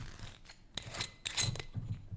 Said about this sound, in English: Yeah, it is a screw top. I should have said that as I'm cracking it. So there's no pop.